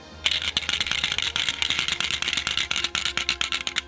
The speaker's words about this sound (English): 24d6. Insert myriad dice rolling noises.